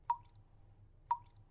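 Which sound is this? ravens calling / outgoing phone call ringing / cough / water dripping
water dripping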